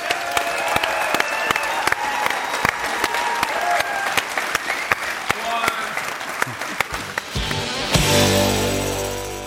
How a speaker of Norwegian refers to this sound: Da vil jeg at vi skal gi en stor applaus til Tor Gotaas.